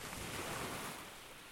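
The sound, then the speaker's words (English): Ocean waves wash onto a beach shore in a soft, steady roar of surf, fairly quiet, with no voices over it. “Today, let's focus on the sound of the waves.”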